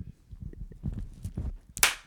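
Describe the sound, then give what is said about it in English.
A single sharp, loud hand clap for audio sync cracks out near the end, following a couple of seconds of low, muffled rumbling and murmur. “Another clap sync because my shit went wrong.”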